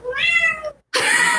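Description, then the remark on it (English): A cat meows once to be let inside, a drawn-out, fairly loud cry, followed by a brief silence and then a burst of broad, noisy sound. No one speaks. “The cat's meowing to get in.”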